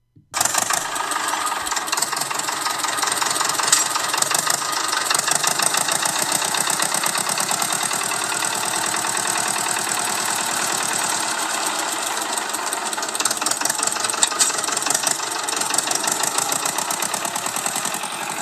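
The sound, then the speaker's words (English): An old tractor engine chugs steadily and loudly close by, a continuous rhythmic knocking idle with rattling vibration, running without a break and no voices. “Okay, so we've got a selection of old tractor sounds in the background.”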